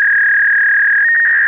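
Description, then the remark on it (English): A steady, high-pitched electronic tone like a fax machine's transmission signal holds unbroken for over a second, wavering briefly near the end, with no talking. “I am receiving your cosmic fax.”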